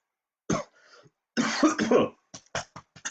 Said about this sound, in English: Pause for cough.